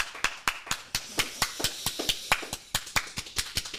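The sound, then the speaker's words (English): Hands clap in a quick, steady rhythm, about four sharp, crisp claps per second, continuing evenly for several seconds with no voices over them. “Great round of applause. I love the energy.”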